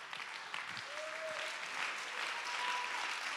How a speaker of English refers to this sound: Let's clap our hands and give God great praise.